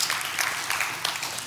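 audience hand clap

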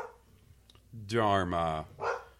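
dog barking

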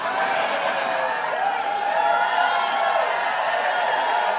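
audience applause and cheering

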